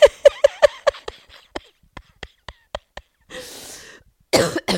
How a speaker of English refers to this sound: Oh, man, I just coughed and a little pee came out. Oh, man. That was really unfortunate.